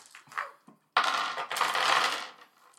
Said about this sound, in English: So, get your dice out of the packets. You don't shake them in the bag.